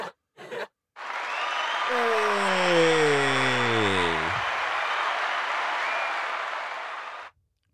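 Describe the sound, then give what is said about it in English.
A hand clap applause sound effect: a dense burst of crowd applause plays for about six seconds, loud and steady before cutting off abruptly, with a falling whoop-like tone sliding down through the middle, played to congratulate Michael Strahan on getting the gap in his teeth fixed. “That's a hand clap, man. Get that man a hand clap.”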